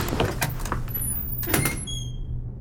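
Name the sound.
door being opened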